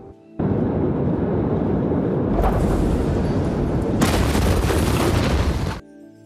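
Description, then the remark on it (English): Loud, dense crackling and popping blasts build into a continuous roaring rumble that grows fuller and harsher, like a massive explosion, then cut off abruptly. No one speaks. “In video from the day of the blast, you can see white flashes, what appear to be fireworks, going off before the massive explosion.”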